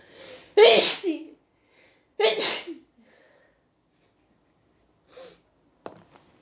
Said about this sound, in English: Oh, I gotta sneeze again.